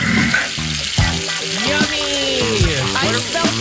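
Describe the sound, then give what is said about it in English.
A steady, loud crackling sizzle of food frying in a pan fills the whole clip, with indistinct voices murmuring over the hiss. “It's a deafening sound of sizzling.”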